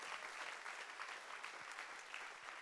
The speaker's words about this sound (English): Come on, let's clap our hands for the dream team.